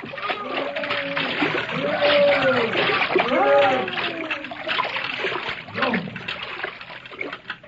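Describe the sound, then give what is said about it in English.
Loud, continuous churning and splashing of water, with rising and falling tonal cries surging through the turbulence, as a whale thrashes and dives (sounds) while a man sinks a lance into it. “Watch out, men. The whale's sounding.”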